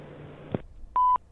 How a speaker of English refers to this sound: Your name, number, and message after the beep. Thank you.